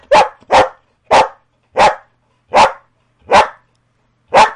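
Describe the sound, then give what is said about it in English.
A female dog barks loudly on command when asked her age, giving seven sharp, separate barks at a slow, steady pace with short silences between them; she is eight years old. “Jazz, how old are you?”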